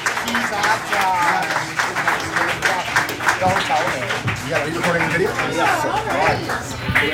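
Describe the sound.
An audience claps steadily for several seconds, welcoming a comedian to the stage for her first comedy performance, a dense, continuous patter of many hands, with voices chattering and calling out underneath the applause.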